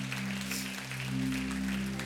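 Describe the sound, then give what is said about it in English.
A church audience claps together to thank Jesus in a steady, dense wash of applause, with sustained low keyboard chords humming underneath and no one speaking. “Can we just give a big clap to Jesus and thank him?”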